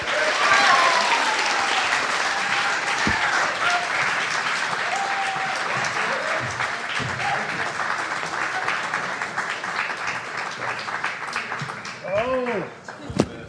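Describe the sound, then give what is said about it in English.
A crowd claps steadily for over ten seconds as three guests are welcomed to the stage, a dense, sustained wash of applause with a few whoops and a brief voice near the end as it begins to taper. “Please welcome to the stage and give a round of applause”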